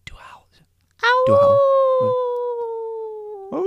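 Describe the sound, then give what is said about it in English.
A person imitates a long, drawn-out howl that holds steady for a couple of seconds and slowly sinks in pitch, after a brief whisper, with short bursts of other voices underneath. “There was a howl.”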